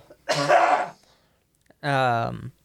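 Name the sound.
cough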